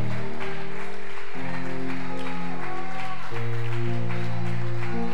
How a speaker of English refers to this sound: Come on, give him a thunderous applause.